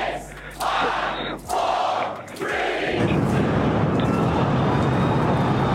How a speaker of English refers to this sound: The launch itself went well, the crowd went wild.